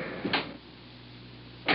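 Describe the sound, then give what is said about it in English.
A car door thuds shut, followed after a short pause by a second solid slam, with a low steady hum in between, as someone is walked to the car, the door is opened for them and a bag is put in the back seat. “Here, I'll open the door for you.”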